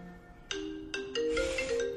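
A phone ringtone plays a bright electronic melody of sustained, stepped tones that swell into a fuller, denser chime. The notes are moderately loud, with no one talking.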